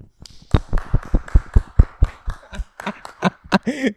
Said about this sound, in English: clapping sounds.